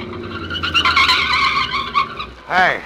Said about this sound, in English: It is late at night. Two cars are speeding along a road. Suddenly, the second swerves ahead and forces the first car into the curb.